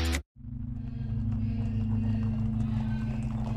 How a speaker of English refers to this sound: Louis Diemschutz, a jewelry seller, is on his way home in his horse and cart